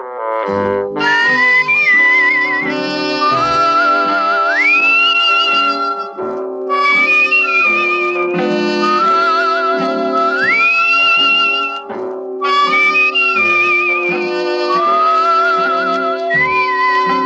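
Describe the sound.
A man whistles a lilting theme tune up close, with sliding notes and phrases that pause and restart, carried over full instrumental accompaniment; no one speaks.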